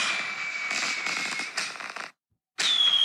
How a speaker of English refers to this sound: But it's worth having a little fireworks show.